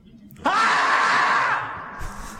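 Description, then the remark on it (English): A single loud, sustained scream from a played recording bursts out suddenly and holds for about a second before trailing off, sharp, with no talking over it. “And the screaming and outrage has been... You mean this?”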